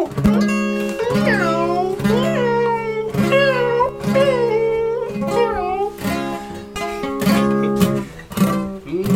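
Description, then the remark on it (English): A person imitates cat meows in a quick string of drawn-out, pitch-bending mews, loud, over a steady droning tone in the background. “Any cat noises you can.”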